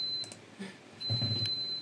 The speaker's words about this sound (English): beeping? It's one of you all. Not me.